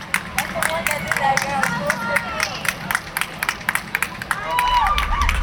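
A small crowd of visitors at an entrance claps steadily and cheers as a man takes his first steps through the gate, with scattered high whoops and shouts rising over quick, rhythmic applause that swells slightly toward the end.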